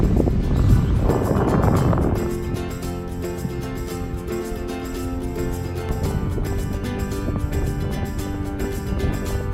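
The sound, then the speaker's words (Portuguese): Wind buffets the microphone in loud, rumbling gusts for the first couple of seconds, then settles into a steadier, softer rush of outdoor air on a slightly windy day at Praia do Espelho beach, where the temperature is mild. “Tem um pouco de vento, mas a temperatura está perfeita.”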